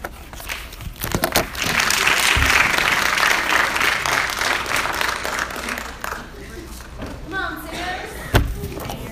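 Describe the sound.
An audience breaks into steady, dense applause that holds for several seconds before thinning out, with a couple of dull thumps and faint voices as the clapping fades.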